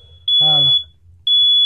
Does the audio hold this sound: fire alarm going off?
yes